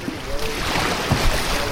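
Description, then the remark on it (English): Steady rushing water runs throughout, with a few soft low splashes and knocks like paddle strokes as a group paddles a small boat along a river. “As the group paddles along”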